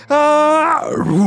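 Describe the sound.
A human voice imitates a bear's roar in a tabletop role-playing game, voicing a character turning from a man into a bear: a loud, steady, high yell holds for about half a second, then slides downward into a rougher, lower growling roar.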